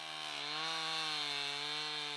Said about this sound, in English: In Kekutsmovi village, on a treeless landscape rimmed with snow, volunteers with chainsaws cut and stack logs that will be sold at a steep discount or given away.